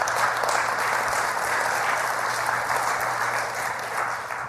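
A church audience gives a clap offering to the Lord, clapping together in sustained, dense applause that holds steady at full volume for several seconds, with no voices rising above it.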